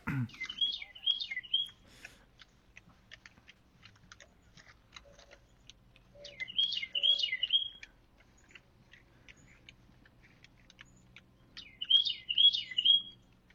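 A songbird sings three short, bright warbling phrases spaced several seconds apart, fairly close and clear, with faint clicking and tapping in the quiet stretches between them.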